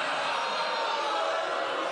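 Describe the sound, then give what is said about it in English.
An audience in Chicago boos, a steady, sustained wash of many voices with no break over its two seconds, fairly loud and even throughout with no single speaker standing out. “You're booing.”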